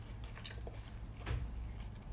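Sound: chewing food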